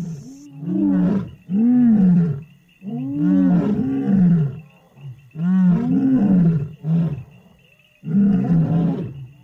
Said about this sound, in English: Lions are social. They live in groups, and so it's very important they communicate with each other and know where everyone else is. And that's why lions roar.